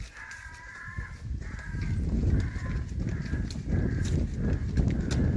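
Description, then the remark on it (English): A harsh, crow-like screeching call repeats roughly once a second, loud, over a steady low rumbling background with no talking. “Wonder how they recorded that noise. Do you think they just tortured a crow for a while?”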